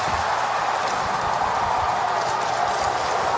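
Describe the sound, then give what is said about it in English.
A hockey arena crowd in Buffalo, New York roars after Jack Eichel scores VGK's second goal. It is a dense, sustained wall of cheering and shouting that stays loud and steady throughout, with no single voice standing out. “Give me this TV highlight of goal number two and listen to the TV guys just to describe the angst in the crowd and the joy from VGK and Eichel.”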